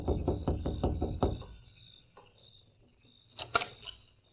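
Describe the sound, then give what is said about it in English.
A man raps on the wooden door of a house in the evening: a quick series of about six sharp knocks, fairly loud, followed by quieter shuffling and a couple of brief louder thumps near the end. “They saw Lem Foster rapping on the door.”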